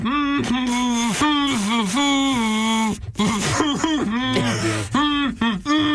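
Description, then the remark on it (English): A single voice hums a song melody without words for others to guess, holding steady sustained notes that step up and down in pitch, with a few brief breaks and breaths between loud, even phrases. “Okay, clear your throat. We get the butter. Yeah. Okay. Ladies and gentlemen, here we go. Little 3, person. 2, 1, hum.”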